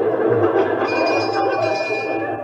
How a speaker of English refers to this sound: Here, what's the bell for? Fire drill. I'm going to give you a fire drill in case there's a fire.